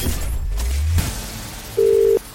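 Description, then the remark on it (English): A telephone line rings out on a Hits Radio Network call to a listener for the £1 million cash register contest: a steady electronic ring tone sounds once, then starts to repeat, after a brief low rumble and a few soft clicks. No one speaks. “One ring. Two rings.”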